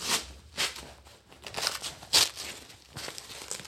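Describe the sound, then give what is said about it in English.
Crinkling and rustling of a thin nylon packable bag being folded and scrunched tightly into its own fanny pack, with irregular bursts of crisp fabric noise and no one speaking. “What I like about it is it folds up real nice and tight. Into a fanny pack.”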